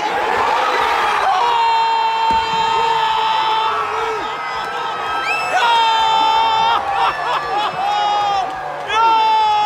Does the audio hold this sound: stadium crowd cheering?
yes